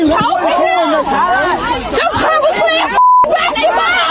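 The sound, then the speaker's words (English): A loud, agitated crowd of many overlapping voices shouting and talking at once, reacting as a white police officer holds his arm around the neck of a 13-year-old Black teen, filmed on a cell phone video in Baton Rouge, Louisiana. Near the end, a short steady bleep tone briefly cuts through the commotion. “The crowd reacting to a white police officer on top of a black teen with what appears from the cell phone video to be his arm wrapped around the young boy's neck.”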